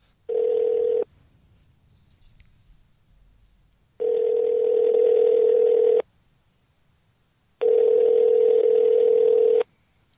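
A telephone line tone sounds in three steady, buzzy bursts of about two seconds each as a call is placed to a massage therapist, separated by short silences, loud with no one speaking.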